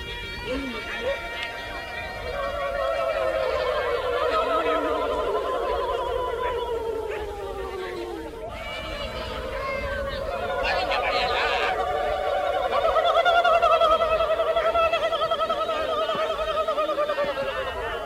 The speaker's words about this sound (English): So that was a recording of the Walbiri people in the Northern Territory of Australia in this rain ceremony.